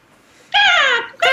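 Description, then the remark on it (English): A person voices a loud, drawn-out caw like a crow, the pitch sliding downward, and then starts a second caw right after a brief pause. “You heard my bird call. Ca-caw, ca-caw.”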